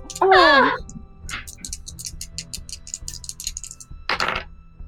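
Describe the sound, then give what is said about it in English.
A bird below deck on a ship squawks loudly and harshly near the start, then squawks again briefly near the end, with faint rapid clicking or ticking filling the gap between calls. “Okay, so the bird squawking from below deck, it rattles you quite a bit.”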